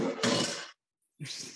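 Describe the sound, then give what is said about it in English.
A tin of freshly poured, self-leveling dessert mixture is slammed down with a harsh, clattering metallic bang that rings briefly, falls silent, then a second loud rattling clatter follows. “I love you just slamming that down.”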